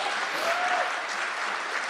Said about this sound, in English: Wait, clap. You have to clap for podcasting.